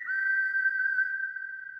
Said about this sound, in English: Well, I gave you the whistle.